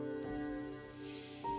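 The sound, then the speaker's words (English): A loud, steady droning buzz with a layered hum and a hissy edge, sustained throughout, from a dense swarm of bees being tended by beekeepers on federal land. No one speaks. “We can hear them roaring. Zzz, really big.”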